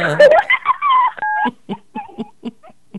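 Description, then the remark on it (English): A single short phone keypad touch tone, a steady two-pitched beep lasting a fraction of a second, set between bursts of voice and followed by rhythmic sung-like syllables. “just pressed a button on her phone.”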